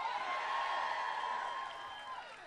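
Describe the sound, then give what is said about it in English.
A large crowd cheers and applauds José Andrés as he speaks while campaigning for Hillary Clinton in the 2016 presidential contest. The dense, steady roar of clapping and shouts holds strong for a couple of seconds before easing slightly toward the end. “Oh yeah, you can clap.”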